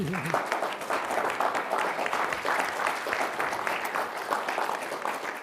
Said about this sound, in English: All right, how about a round of applause for our